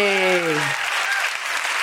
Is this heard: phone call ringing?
no